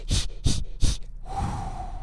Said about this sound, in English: Okay, I'm using the breathing techniques that they taught me before I went into labor.